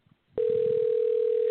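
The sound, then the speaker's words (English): A steady electronic telephone ring tone sounds over the line as a phone call goes unanswered, one continuous loud tone that starts abruptly after a brief moment of faint murmuring and holds unbroken to the end. “They suck at answering their fucking phone.”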